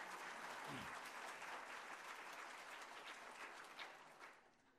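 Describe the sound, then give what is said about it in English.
An audience at a church service applauds with steady, dense clapping, holding strong for several seconds before tapering off near the end. “They got applause.”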